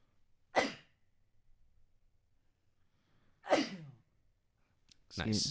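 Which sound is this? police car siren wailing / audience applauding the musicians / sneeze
sneeze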